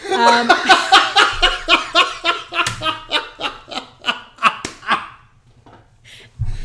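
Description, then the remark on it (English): A man laughs heartily and rhythmically, slapping his own knee with his hand a few sharp times, before the laughing trails off into quiet. “when he's really laughing... literally slaps his knee.”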